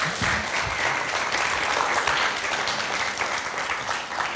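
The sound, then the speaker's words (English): A crowd applauds steadily, a dense, even patter of many hands clapping at a constant loud level for several seconds without any voices. “Shall we give him a round of applause if they are?”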